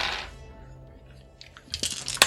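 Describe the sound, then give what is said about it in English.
Dice clatter in a brief burst of sharp clicks and rattles near the end, after a soft rustle and a quiet pause, as a die is nearly dropped while rolling to hit. No one speaks. “Nearly dropped a dice there.”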